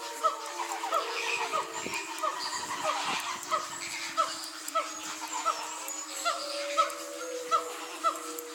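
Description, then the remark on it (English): Zoo sounds recorded by zookeeper Brendan Walsh: wolves howl in long, wavering tones while booming Simon gibbon calls repeat in a steady, pulsing rhythm over them, with a busy chorus of other animal cries, including almost mechanical-sounding lemur calls, filling the background. “What we're hearing there is a mix of wolves, and then that booming sound, that's the Simon Gibbons.”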